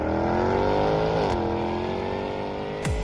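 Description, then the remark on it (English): The engine of a 575-horsepower supercharged V8 Jaguar F-Type R sports car roars loudly and steadily, its pitch sliding down as it shifts gears, then a sharp rev burst near the end. No voices are present. “What feeling do you get when you drive the 575-horsepower supercharged V8 Jaguar F-Type R?”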